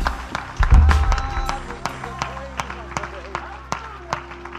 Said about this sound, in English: Would you clap your hands to the Lord one more time all across the house?